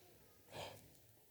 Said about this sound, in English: I hear some gasps from the young ones here. Wait, what? In danger of missing Christmas.